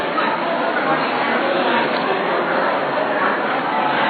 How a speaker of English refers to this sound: Man, I love to hear all the chatter. That's good. That's good.